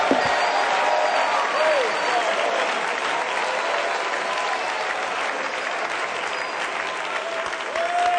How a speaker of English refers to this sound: Oh, let's give the Lord a good hand clap tonight. The Bible said, clap your hands, all you people, and shout unto God with a voice of triumph.